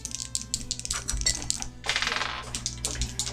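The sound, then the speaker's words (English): Polyhedral dice, a D12 and a D10, clatter and tumble across a hard tabletop during a dice game in a quick burst of sharp clicks and rattles that settle after a few seconds, with no voices. “So everybody is going to start off with a D12 and a D10. You're gonna roll those and keep those hidden.”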